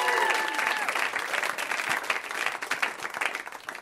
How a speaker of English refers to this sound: All right. Let's have another round of applause